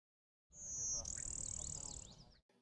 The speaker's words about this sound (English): The blue-winged warbler.